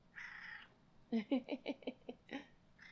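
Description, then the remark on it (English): A cat named Junior lets out a low, growly yowl, broken into a run of rough, pulsing bursts for over a second, fairly loud, after a brief breathy rustle. “He sounds like Chewbacca. He's got a Chewbacca kind of sound.”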